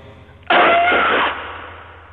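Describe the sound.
A voice imitates a scream of pain: one sudden, loud, harsh cry lasting under a second, strained and breathy, then trailing off into a fading rasp.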